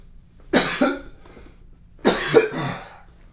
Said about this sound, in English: My eyes are watering up because I'm trying not to cough, and then it just makes me need to cough more.